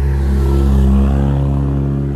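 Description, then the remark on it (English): A car engine revs loudly on the street, a deep, steady rumbling drone that swells slightly and holds for a couple of seconds, with no voices over it. “Excuse the cars around here.”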